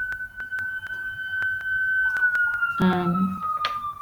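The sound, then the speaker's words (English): A police siren holds a long, steady wailing tone that slowly drops in pitch as it passes through the city, with brief voice sounds and background noise underneath. “I'm in the city, by the way, so that's why you can hear those sirens.”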